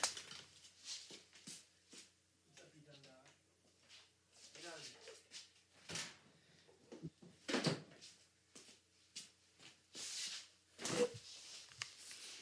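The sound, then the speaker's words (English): A door in a garage being closed, with a run of scraping, rattling handling noises and sharp knocks leading up to a couple of heavier, louder thuds as it shuts. “I gotta close the door real quick to block out some sound.”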